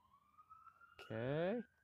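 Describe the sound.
A police car siren wails faintly as the car goes by, one steady, slowly rising tone running the whole time, briefly overlapped by a click and a short burst of a voice.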